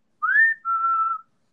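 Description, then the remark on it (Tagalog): A person whistles two quick notes, a rising tone sliding straight into a longer steady one, clear and fairly loud against silence, like a sudden wolf-whistle imitation, imitating a whistle heard suddenly in front of them in an empty classroom. “Biglang may sumipol dun sa harap ko na.”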